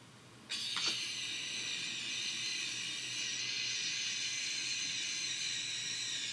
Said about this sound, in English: So, what is that sound? It's a gecko scream. Can you hear it one more time now with that context? Yeah. Listen for this little gecko who does not like being touched.